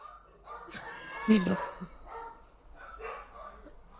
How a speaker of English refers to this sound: There goes my dog. Oh my goodness. Who was that? Max. Max. Jesus, Max.